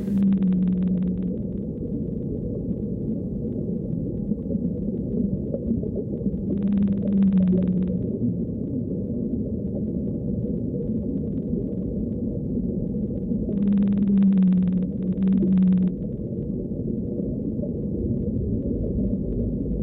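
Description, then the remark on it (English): Blue whale song: deep, drawn-out tonal moans recur roughly every seven seconds over a steady, murky underwater rumble, each call swelling briefly before fading back into the hiss. “And here, the song of the blue whale.”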